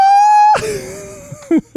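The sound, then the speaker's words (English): A man's excited scream over team radio at the Styrian GP, as he pops out of his chair with arms raised: a loud, sustained high-pitched scream that breaks off sharply, then trails into strained, uneven vocal sounds, followed by two short shouted bursts. “What was his body language when he let out that shriek, too?”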